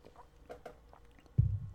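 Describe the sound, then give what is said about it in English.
Someone takes a sip of water: soft, wet little mouth clicks and slurps, then a heavier low gulp or thud near the end. No one speaks. “I will answer that after I take a sip of water.”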